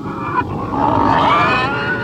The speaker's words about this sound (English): Can you imagine how noisy a group of pigs can be if they decide to cause a commotion? Oh, maybe like this?